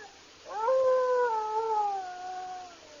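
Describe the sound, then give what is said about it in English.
A single long wolf howl from the east wing of a cabin rises sharply, then holds a steady, slightly wavering pitch before slowly fading, heard alone with no talking. “That howl's coming from the east wing of this cabin, right over there.”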